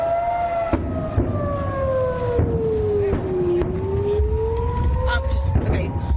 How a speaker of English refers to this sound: This is video of people scrambling in the wreckage as sirens blared in the Israeli city of Ashkelon. Our own Aaron Burnett was right by the Gaza border as that barrage of rockets flew overhead. Yes. You hear these sirens?